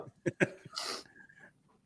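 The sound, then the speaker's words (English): A single sneeze: two short catching breaths, then a sharp, hissing burst, followed by a faint trailing tone before it fades to quiet. No one speaks. “Yeah, I got to sneeze again.”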